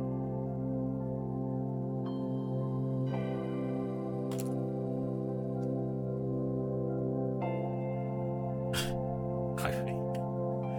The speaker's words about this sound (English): It's a slow intro, isn't it? Yeah, it's a lot of bells. It's Christmas time.